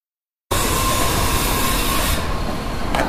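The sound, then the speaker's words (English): Construction noise on John Street, heard at home by residents: a dense, harsh jackhammer rattle mixed with the steady whine of a saw, starting abruptly after a short silence and staying loud and unbroken, with no voices. “When the jackhammers start, I don't hear the saws anymore because the jackhammers are going.”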